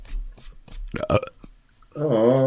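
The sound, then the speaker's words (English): A loud burp rumbles in near the end with a low, wavering tone, preceded by a short sharp burst and some scattered muffled noises. “Dude, is it possible to fart and burp at the same time?”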